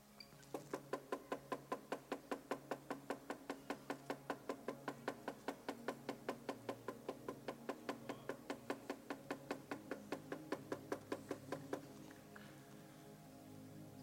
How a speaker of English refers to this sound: My beloved is knocking.